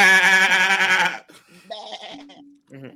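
A loud, wavering goat bleat sound effect rings out for about a second, then cuts off, leaving quieter, brief voice-like sounds afterward.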